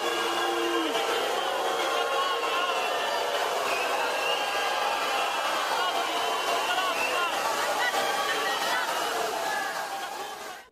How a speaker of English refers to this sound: because remember, there's thousands of tourists there watching this unfold. This is what the crowd sounded like as they, these eight climate activists, were dumping this black muck into the Trevi Fountain.